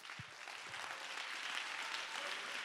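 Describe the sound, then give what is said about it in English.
An audience at a church service claps steadily, a dense wash of overlapping hand claps that holds an even, moderate loudness throughout, with a few low thumps near the start. “Oh, clap your hands in the house.”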